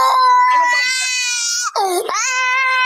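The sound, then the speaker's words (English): A five-year-old boy held by police wails loudly and continuously in a high, strained pitch, the cry dipping briefly into a choked break before rising again into a sustained sob. “When the boy doesn't stop crying, one officer screams just inches from his face.”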